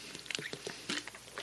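Someone takes a quiet sip of water, with soft mouth clicks and small wet swallowing sounds in a brief irregular cluster, no talking.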